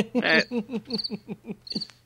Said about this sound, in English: you're not going to be sitting out on the lanai with the crickets playing in the background?